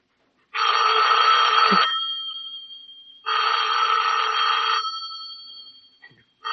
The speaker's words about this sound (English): Better answer the phone.